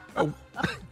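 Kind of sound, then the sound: human body sound, cough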